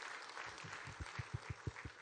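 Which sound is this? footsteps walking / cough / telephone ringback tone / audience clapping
audience clapping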